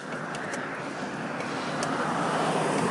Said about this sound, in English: That car right there! Go away!